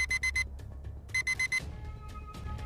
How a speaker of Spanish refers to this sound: Los sensores y las alarmas se disparan sin dominio.